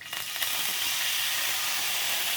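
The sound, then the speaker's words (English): A loud, steady sizzle as Canadian whiskey is poured into a hot skillet to deglaze it with the heat turned off, a broad bright hiss that flares at the start and holds continuously, with no talking. “You can hear the sizzle as soon as it hits the skillet.”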